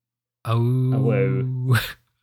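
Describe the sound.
A person imitates a hound dog's howl, a single sustained, steady-pitched vocal wail lasting over a second and ending in a breathy release, fairly loud.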